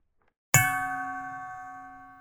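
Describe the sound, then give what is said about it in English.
A single doorbell ding on a house built of sticks strikes after a brief silence, its bright metallic tone ringing out clearly and slowly fading away. No voices are present. “I had just grabbed the doorbell when I felt another sneeze coming on”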